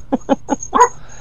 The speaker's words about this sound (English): Dogs are going to start barking.